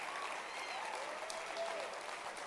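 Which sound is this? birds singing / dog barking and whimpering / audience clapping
audience clapping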